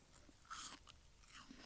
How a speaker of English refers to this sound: I'd say it's a lovely crunchy apple.